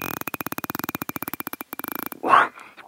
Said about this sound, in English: It's a bottlenose dolphin recorded by European scientists who were trying to understand how dolphins and other toothed whales like orcas are able to produce these sounds.